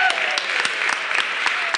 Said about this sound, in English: he deserves a round of applause, first of all.